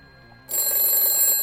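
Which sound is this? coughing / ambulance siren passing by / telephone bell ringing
telephone bell ringing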